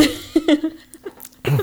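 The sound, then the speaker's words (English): A few short, raspy coughing bursts from smoking weed in a quick cluster, then a pause and one louder, harsher cough at the end, with a faint steady hum underneath. “It's a weed cough. It's not COVID.”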